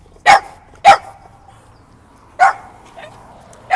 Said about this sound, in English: So, it's a very rambunctious little... What kind of dog is that? A pug? I think that was a pug you were hearing barking.